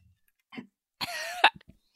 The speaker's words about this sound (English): choked on her strawberry